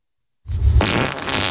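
A loud recorded fart of a man, played back, starts after a brief silence, opening with a low rumble and turning into a wet, sputtering, spluttering blast that lasts about a second.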